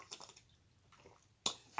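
Wild cherry fizzy water being poured, with soft crackling bubbles at first, then two sharp bursts of hissing carbonation near the end. Nobody speaks.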